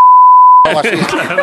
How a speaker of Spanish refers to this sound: Ahora esto hay que ponerle otro pitido.